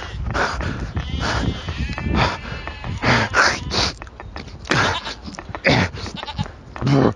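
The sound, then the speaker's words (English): A goat bleats several times in wavering, quavering cries, loud, with breathy snorting sounds between the calls. “I think the goat man's getting closer.”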